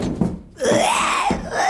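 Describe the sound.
A person vocalises a leopard-like call: one strained, raspy wail that rises and falls in pitch, held loudly for about a second, with a brief thud before it.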